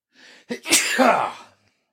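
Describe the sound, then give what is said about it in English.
A single loud sneeze, the sneezer turning away from the microphone: a brief sharp inhale followed by an explosive burst that trails off, heard on its own with no talking. “I tried to look away from the microphone on that. I hope I didn't blow your eardrums out.”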